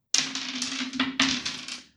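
Dice clatter and tumble across a hard desktop in a quick run of sharp clicks and rattles, fairly loud, settling after about two seconds with no voices; a roll to act under pressure that comes up 5.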